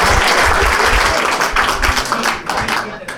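A burst of loud, dense applause from a group, many hands clapping at once in a steady crackling wash that thins slightly toward the end, with a few voices mixed in.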